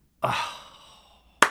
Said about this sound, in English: sit back down and limit the slow clapping as much as possible.